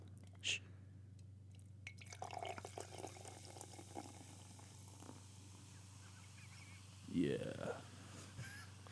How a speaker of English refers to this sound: Hold on, I got a little more room in the glass. Mm. Got to finish that pour.